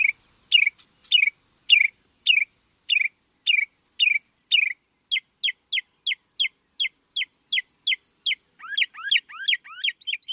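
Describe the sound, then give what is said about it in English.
A northern mockingbird sings alone, clear, repeating one sharp phrase about a dozen times before switching to a faster series of thin notes, then a varied run of swooping whistles. “Meanwhile, as early as late January, some resident birds are beginning their spring singing, especially in the southern states, like this northern mockingbird.”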